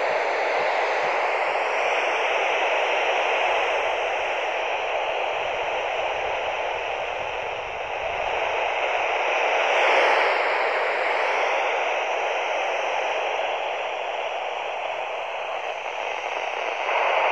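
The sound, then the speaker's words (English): Steady, fairly loud radio static after a satellite signal is lost hisses continuously for about seventeen seconds, a dense wash of noise with only a slight swell midway and no voices coming through. “And we lost the signal.”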